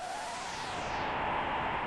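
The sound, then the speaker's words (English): A steady, hollow rush of wind hisses and whooshes continuously from a secret passage behind a bookshelf, its tone shifting slightly as it blows, with no voices present. “We can hear the rustling of wind, and behind the bookshelf, there is a secret passage.”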